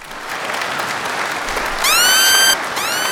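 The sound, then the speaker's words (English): A crowd applauds steadily throughout for a show's host, a dense wash of clapping, with a couple of bright, rising whistle-like tones cutting through near the end. “Clap for me, bitch.”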